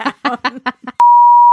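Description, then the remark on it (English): A few quick spoken syllables give way to a sudden, loud, steady high-pitched beep tone, like a censor bleep, which holds unbroken at constant pitch until the end. “Bee! And dumpster fire just gets shut down.”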